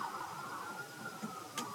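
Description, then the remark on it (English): An emergency vehicle siren holds a steady, slowly rising wail throughout, muted, with a low rumble of traffic underneath and no one speaking. “I tell you, the song that saved me while I'm trying to talk over the damn sirens, as my relatives used to say, sirens.”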